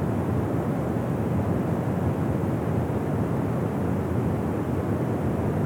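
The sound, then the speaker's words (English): Dettifoss Waterfall in Iceland roars steadily as its river drops into a canyon, a dense, unbroken rush of water heavy in the low and middle tones. It stays loud and constant throughout, with no voices or other sounds. “Dettifoss Waterfall, Iceland”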